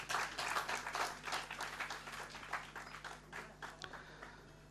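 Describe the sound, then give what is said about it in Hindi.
An audience claps to welcome the performing musicians, a dense patter of many hands that swells at first and then slowly thins and softens over several seconds, with no voices over it. “मैं आप सभी से अनुरोध करता हूं कि तालियों से कलाकारों का स्वागत करें।”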